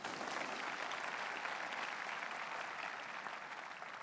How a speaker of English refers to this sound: Thank you very much. Clap for him.